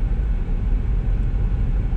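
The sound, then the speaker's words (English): Steady low rumble of road noise from inside a car driving to a house, a continuous droning hum with no voices, even and fairly loud throughout. “Literally in a car driving to your house.”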